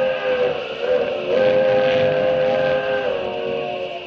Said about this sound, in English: He's waiting for the train. Gonna blast it right off the tracks.